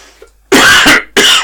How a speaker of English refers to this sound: I should probably wrap this up because I can't imagine anybody is enjoying this coughing.